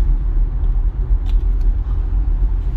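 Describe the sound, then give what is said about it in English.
A steady low engine rumble and road noise from inside a car in traffic, with a faint metallic clink partway through and no one talking. “I'm still in traffic.”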